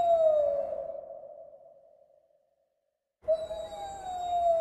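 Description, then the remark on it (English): A wolf howl sound effect: two long, wavering howls, each a sustained mid-pitched tone with a slight downward glide. The first fades away into silence before the second comes in loudly and holds steady to the end. “Let's get a wolf howl on that one.”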